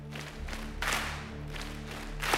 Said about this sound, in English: Can you give me a beat this morning just for a second? Just go boom, boom, clap, boom, boom, clap.